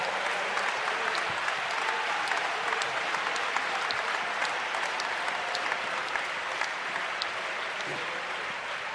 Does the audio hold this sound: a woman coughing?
no